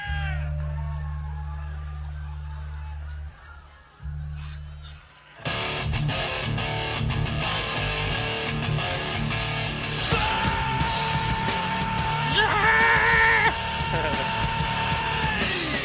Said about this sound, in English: I love his scream. It's even live. It sounded good.